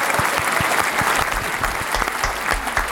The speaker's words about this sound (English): You know, I got to get my applause. There it is.